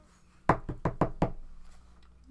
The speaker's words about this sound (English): Oh, wait. Did they knock on you just now? Because that's cool.